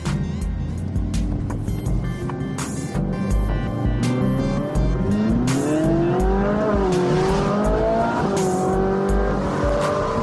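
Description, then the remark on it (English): A commuter car, driven every day to work, revs and climbs through the gears while driving, its engine pitch sweeping up and dropping back, loud with steady road and wind noise underneath. “My commuter car, so I drive it every day to work.”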